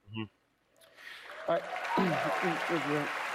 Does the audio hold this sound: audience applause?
yes